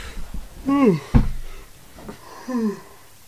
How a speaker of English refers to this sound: Yawn. Excuse me. That was the biggest yawn ever.